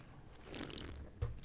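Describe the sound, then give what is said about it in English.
Beer cans being cracked open on a 3, 2, 1 countdown and poured, one a Nugget Nectar by Trogues Brewing: a steady fizzy, splashing hiss for most of a second, then a short sharp crack near the end. No one talks. “We're going to crack them if we got them in 3, 2, 1.”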